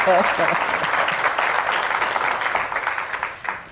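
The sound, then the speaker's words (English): An audience breaks into steady, dense applause for the guests of a morning panel, keeping up for several seconds before tapering off at the end, with a brief voice heard at the very start. “No applause for our guests this morning. Come on, people.”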